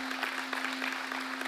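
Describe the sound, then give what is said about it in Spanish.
An audience applauds in a dense, steady patter of many hands clapping at once, fairly even in loudness throughout, with a faint constant hum underneath and no one speaking. “Sí, si alguien quiere aplaudir a eso, apláudalo.”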